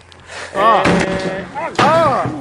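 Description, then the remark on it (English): A loud door slams hard into a man, hitting him in the eye, a sharp banging impact followed by a second heavy thud, with people yelling and exclaiming over both hits. “Motherfucker takes the whole door.”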